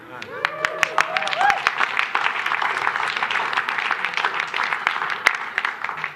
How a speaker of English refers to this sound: Let's give them a really good round of applause.